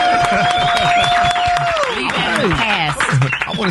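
A loud, dense round of applause with steady clapping throughout, mixed with cheering voices and a sustained whistle that slides downward partway through.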